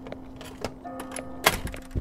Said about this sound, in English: I warmed my hands together before tugging open the swinging metal door.